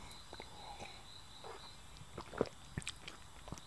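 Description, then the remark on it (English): A quiet sip of wine from a glass: soft wet mouth clicks and a brief slurp, set against faint background hiss with no one talking. “So let me just go for the first sip.”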